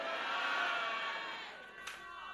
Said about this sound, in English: Can you preach with me by shouting a louder amen?